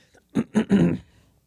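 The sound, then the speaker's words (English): A person clears their throat in three quick rasping bursts, the last one longer and rougher. “Sorry, I've got to clear my throat so much.”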